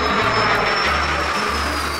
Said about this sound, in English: Or an airplane, 飞机的声音。